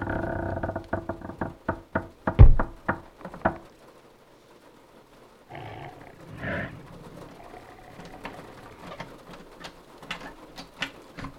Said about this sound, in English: Oh my god, it's trying the door. What? It can't. No.